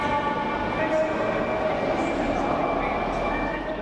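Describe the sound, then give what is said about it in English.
A train idles at Lime Street station on a midsummer day during a heat wave, its steady rumble carrying a faint, sustained electrical whine, with indistinct voices murmuring in the background throughout. “I step off the train.”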